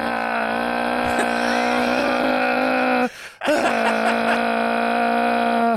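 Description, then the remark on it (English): A voice reenacts the motor noise a boy makes pretending his toy handsaw is a chainsaw: a steady, droning chainsaw-motor imitation, harmonic-rich and loud, breaking off briefly midway before revving back up and holding the sustained growl. “It's a chainsaw noise, by the way.”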